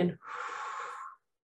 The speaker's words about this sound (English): So let's take three slow, deep breaths to start with. Breathing in and breathing out really slowly.